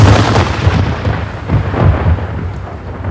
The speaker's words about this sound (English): My grandpapa then immediately ordered one of the forward cannons to fire at the fleeing dark elf sea serpent, even though they were not in range.